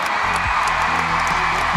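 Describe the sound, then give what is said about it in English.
A large crowd at John Cain Arena roars as the Australian Diamonds win the match by 10 goals, in a steady, dense wash of noise, with scattered shouts and whoops rising out of the sustained cheering throughout. “Hear the crowd roar.”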